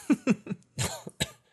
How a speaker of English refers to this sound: I get discombobulated by coughing.